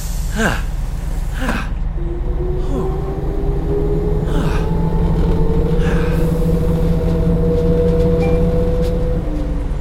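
A bus rumbles along in the rain with a steady low engine drone and a rising, whining gear tone, punctuated by a few short hissing bursts like air brakes as it slows and stops to pick up a passenger.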